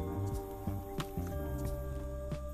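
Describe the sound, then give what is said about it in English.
Someone drinks water with several soft gulping swallows at an uneven pace, over a steady low electrical hum. No one speaks. “Drink water. Oh, that's actually what I got right here too.”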